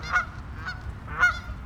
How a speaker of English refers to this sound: And then, of course, there's the geese.